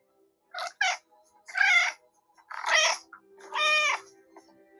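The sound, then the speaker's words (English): A domestic cat meows several times in a row, recorded with the ChatGPT app: two quick chirpy calls, then three longer, drawn-out meows, fairly loud with short pauses between, no talking. “record your cat's meows. Here's our very own Mochi communicating with us.”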